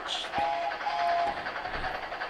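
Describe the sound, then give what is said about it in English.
A brief train sound effect with a whistle-like tone over rumbling, hissing rail noise, loud, lasting a couple of seconds with no talking. “Give me the choo-choo train real quick.”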